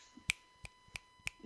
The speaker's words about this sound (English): Can you snap your fingers? I can, yeah.